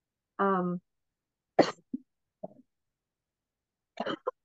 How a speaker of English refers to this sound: Excuse you. Bless you. Sorry. Cough.